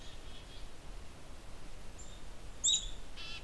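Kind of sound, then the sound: bird, black-capped chickadee calling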